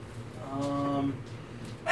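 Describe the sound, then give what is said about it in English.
A single voiced sneeze with a drawn-out, tonal middle, followed by a brief quieter stretch and a short noisy burst at the end. “Bless you.”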